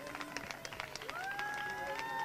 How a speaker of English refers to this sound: Oh, let's do that together. Clap your hands. Clap your hands and give God glory. Give him a shout. Give him a shout. Give him a shout.